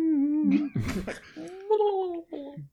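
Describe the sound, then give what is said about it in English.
A person imitates a cube creature whimpering quietly after a fire effect sizzles off gloop and shrinks it, making a few wavering, whiny tones with a brief breathy rasp in the middle, rising and falling before trailing off. “As it sort of like whimpers quietly, you hear it go.”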